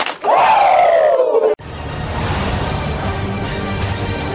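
Two claps and a loud, drawn-out Ric Flair-style "woo!" shout that slides downward in pitch for over a second, then cuts off into a steady roar of crowd noise that continues to the end.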